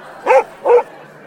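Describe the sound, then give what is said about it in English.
A dog gives two sharp, loud barks in quick succession, with a brief pause between them and quiet background after. “that's Basil barking”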